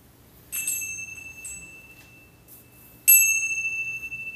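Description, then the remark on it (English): Two heavy metallic chime strikes, one near the start and a louder one about two and a half seconds later, each ringing out with sustained resonant overtones that slowly decay. “Ooh, that was resonant. What is that? Chimes. Kind of heavy.”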